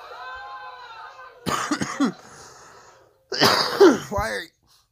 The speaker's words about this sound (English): Why are you still coughing when you dabbed 37 minutes ago